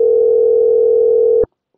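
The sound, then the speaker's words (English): A steady telephone ringing tone from an outgoing call, heard as one loud, unbroken electronic hum lasting about a second and a half before it cuts off into silence. “Somebody pick up the phone.”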